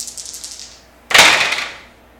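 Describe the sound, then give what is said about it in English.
Dice rattle with a quick run of light clicks for about a second, then spill onto a table in a loud, bright clatter that fades as they settle. No one speaks. “Yeah, dice are no help.”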